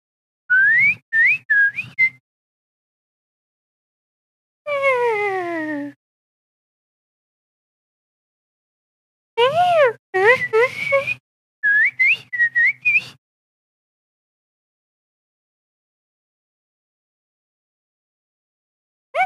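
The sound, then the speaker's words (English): A parrot whistles in several separate bursts: quick chirpy notes, a long downward-sliding whistle, then looping warbles that rise and fall in pitch, with silent gaps between and no talking. “Is that a parrot?”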